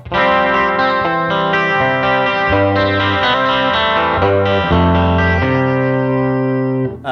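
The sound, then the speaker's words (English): An electric guitar plays sustained chords through a Princeton Reverb amp, changing every second or so, with a warm chorus-like shimmer and light grit, loud with no one talking. “But yeah, it's just a cool little Princeton Reverb.”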